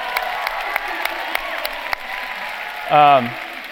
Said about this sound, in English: So Watergate, clap for that.